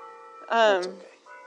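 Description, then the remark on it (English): A church bell rings, heard from right under the bell, with a steady, sustained metallic hum, swelling into a brief louder, brighter strike before settling back into a lingering tone. It sounds clear. “And we're gonna go right under the church bell as it rings.”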